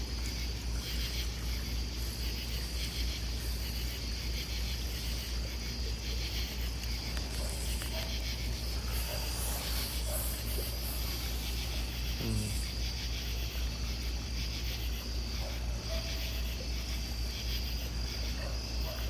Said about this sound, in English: You can hear the crickets. The crickets are out tonight.